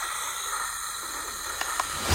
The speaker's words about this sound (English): I can provide sleep sounds if you like. I have several options. Summer night, ocean paradise, whale calls. No, no. White noise is fine.